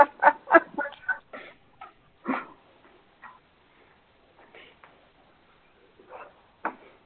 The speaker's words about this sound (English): But the chickens are definitely loving the zucchini, so that's a good thing.